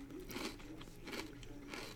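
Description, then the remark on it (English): Crisp crunching of a folded, lightly salted potato chip made of potatoes, peanut oil and salt being bitten and chewed, with several bursts of brittle cracking in a steady rhythm and no talking. “They are crunchy. They're crunchy.”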